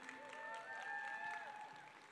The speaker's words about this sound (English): All right, y'all can have a seat, ladies. Welcome. Give a round of applause for all the ladies.